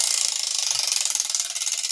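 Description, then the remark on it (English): A spinning prize wheel, spun to pick this week's theme, clicks rapidly against its pointer, a steady stream of bright, high-pitched ticks that holds an even pace for about two seconds with no voices. “Brent, do you have a preference this week on the wheel?”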